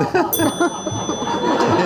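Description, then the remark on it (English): A small bell is struck once and its bright, high tone rings on steadily under close voices and light laughter that continue throughout. “They've attached very kindly just this bell.”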